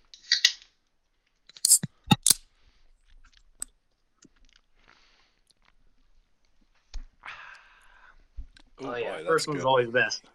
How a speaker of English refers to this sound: It's time for some beer, time for some hockey. Let's crack these open.